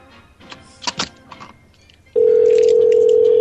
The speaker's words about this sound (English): It's just listening to a phone ring. He's not answering.